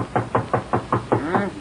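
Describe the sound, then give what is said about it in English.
A quick, steady run of about six fairly loud knocks on a laboratory door, with a faint voice briefly sounding beneath the last couple of raps. “Knock on the door for me, will you?”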